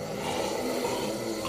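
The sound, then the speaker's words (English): A person imitates snoring with one drawn-out, rasping, nasal breath, fairly steady in loudness, with no talking around it. “Well, you're gonna snore if you fall asleep.”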